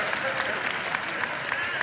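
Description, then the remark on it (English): An audience claps steadily for a couple of seconds, a dense patter of many hands at moderate volume with a few sharper claps standing out. “I'm not looking for claps anyway, but that nevertheless.”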